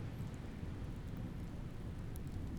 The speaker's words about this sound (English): The rain fell heavier and heavier still, unerring in its attempt to wash away the heat of that summer. We stood stock still, anchored up against one another, in awe as lightning threaded itself across the night sky and thunder rallied around us.